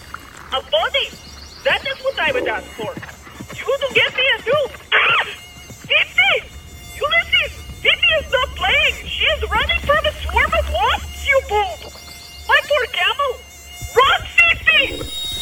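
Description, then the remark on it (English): A loud swarm of wasps buzzing in uneven, pulsing bursts of whining drone, chasing a running camel, over a faint steady high-pitched hum that continues throughout. “The camel's running from a swarm of wasps.”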